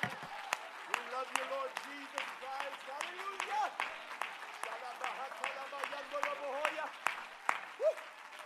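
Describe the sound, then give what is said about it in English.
A church audience claps unevenly to the Lord while many voices shout praise over one another, the sharp hand claps popping steadily through a dense, rising and falling wash of cheering. “Would you clap your hands unto the Lord and let out a shout of praise?”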